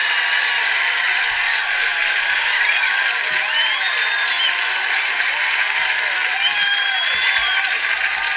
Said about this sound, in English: Wow, fucking an hour of applause. Yay. SNL, classic.